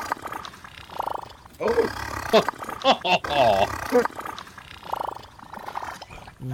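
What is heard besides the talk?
loud fart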